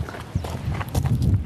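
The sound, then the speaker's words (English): Goats' hooves clatter across hard ground in a quick, uneven run of steps, the light knocking sounds overlapping against a low background rumble. “What's he then? Oh, goats.”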